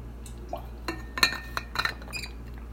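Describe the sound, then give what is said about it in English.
Several light glassy clinks and taps, fairly quiet, scattered irregularly over a couple of seconds with soft handling noise, like a glass being picked up and set against something, as someone gets a glass of water. No talking. “Jesus, my throat. I need some water.”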